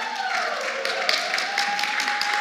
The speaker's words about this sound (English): I love this. I just get an applause for walking onto the stage.